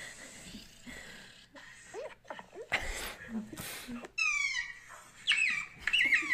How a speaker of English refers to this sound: Oh, it's a dog.